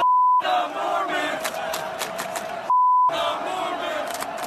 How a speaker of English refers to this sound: listen to how some fans at the University of Oregon this past weekend were chanting